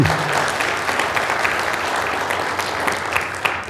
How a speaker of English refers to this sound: So those are two exciting news, and I think that God deserves a hand clap of praise for what he's doing everywhere.